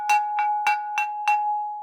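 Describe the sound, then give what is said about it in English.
A gong is struck five times in quick, steady succession, rung at home to call children home, each hit adding to a bright metallic tone that keeps ringing and slowly fades after the last strike. No one speaks. “And we had to come home if either the streetlights came on or my mother had a gong, which I still have, that she would ring.”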